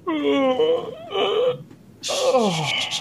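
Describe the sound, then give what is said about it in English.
A voice imitates a loud, drawn-out yawn in three voiced swells, each sliding downward in pitch, the last one breathy and groaning as it trails off. “You hear a loud yawn.”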